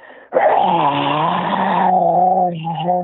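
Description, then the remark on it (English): A voice imitates a terrifying scream blended with a growl, one loud sustained harsh cry of about three seconds with a gravelly, rasping edge, alone. “Like just absolutely terrifying scream, growl, and I was like, what the fuck?”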